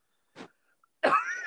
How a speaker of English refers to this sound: God, I've been coughing all show.